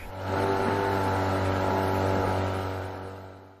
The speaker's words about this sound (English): Hit the engines, princess.